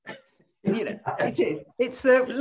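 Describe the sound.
A person nearby coughs in surprise, several rough, throaty bursts in quick succession, close and fairly loud, each with a voiced, almost spluttering edge.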